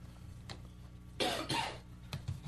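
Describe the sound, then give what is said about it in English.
Two harsh coughs in quick succession, loud and raspy, with a faint throat noise before and after and no talking. “I'm going to keep potting down and coughing throughout the course of the night.”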